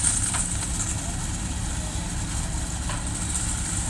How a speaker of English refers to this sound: And basically how this works is there's people handpicking the corn, and they toss it up to other people who are on a trailer who sort it and pack it. And this whole operation is getting pushed by a truck driving very slowly backwards down the row.